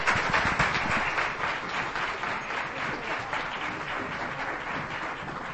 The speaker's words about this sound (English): What a great way to end the conference. Let's give them one last round of applause as they leave our stage here.